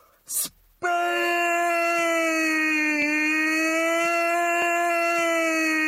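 After a brief burst of noise, a man yells a single loud, steady "aaah" vowel, holding it unbroken at a constant pitch for about five seconds.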